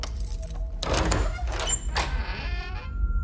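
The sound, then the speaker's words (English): Keys jangle and scrape in several locks outside a door, with a few sharp metallic clicks and clunks as bolts turn one after another, ending in a faint lingering ring. “The locks outside my door jangled, and I heard a set of keys methodically opening each at one.”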